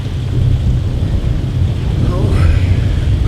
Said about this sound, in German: Es blitzt und donnert und wir sind Ziel Nummer eins.